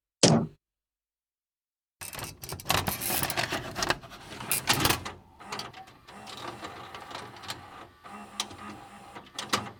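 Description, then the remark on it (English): A printer whirs and rasps as it feeds and prints a page, a steady mechanical churn with clicks and bursts of grinding, preceded by a brief click and a short silence. “This week, the still warm piece of paper in my hand reads, the top 5 cities with the highest paid bus drivers.”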